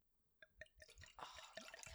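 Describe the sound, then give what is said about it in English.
Wine is poured into a glass close to the microphone, starting with a few distinct glugs and splashes that quickly build into a steady, bubbling stream of liquid. “Let's do it right by the microphone so everyone can hear it.”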